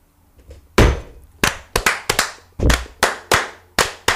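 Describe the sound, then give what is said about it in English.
A few faint knocks of glasses on a table during a toast, then a run of about ten sharp hand claps in an uneven, loosely synchronized rhythm, with no talking. “First clap was off because the glasses were perfect.”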